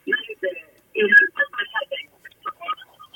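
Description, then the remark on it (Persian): A television plays in the background of a phone call from a caller in Mashhad, Iran, its muffled, band-limited voices coming in choppy bursts at moderate loudness over the line. “تلویزیونتون رو خاموش کنید. سر صدای زمینه رو لطفا آره کم کنید.”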